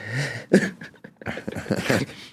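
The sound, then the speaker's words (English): A dog whimpers in a few short, high, whiny bursts with breathy sounds between them, fairly loud and with no one talking. “That dog? I heard a dog.”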